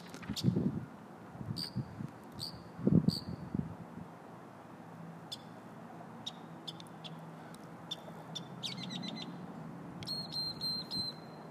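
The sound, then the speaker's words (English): Outdoors, scattered high birds chirp and trill in short bursts while low gusts of wind rumble and buffet underneath, loudest near the start, with no talking. “Pepper right now as I just sit here, and I want you to listen to the wind and the birds for just a couple of minutes.”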